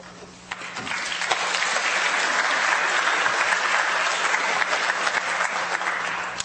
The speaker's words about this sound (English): That applause is for you, Simon, not for me.